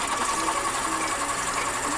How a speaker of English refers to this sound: Sharpen my red pencil.